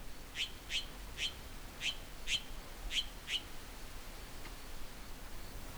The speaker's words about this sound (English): It's so quiet on the trail, the chirp of the jay pops out as well. So we're looking at a Mexican jay. Here comes his partner.